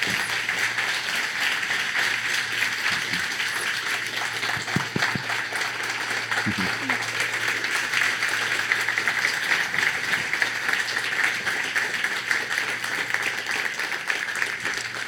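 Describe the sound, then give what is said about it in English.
Sustained audience applause, a dense steady wash of many hands clapping at an even loudness for the whole stretch, with a low hum underneath and no talking. “Will you guys give her a round of applause?”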